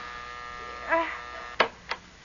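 A doorbell buzzer drones steadily with a harsh, even electric hum that runs the whole time, broken near the end by two short, sharp bursts of noise.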